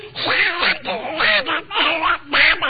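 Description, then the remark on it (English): A voice imitates Donald Duck impersonating Huey Green impersonating Donald Duck, reciting Simple Simon, delivering a rapid run of raspy, quacking syllables in several bursts with brief pauses, loud, like garbled duck-speak. “I'm now going to do Donald Duck impersonating Huey Green impersonating Donald Duck.”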